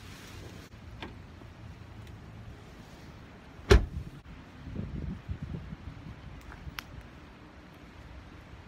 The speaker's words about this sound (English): I'm gonna try and get out of the car here, get some air.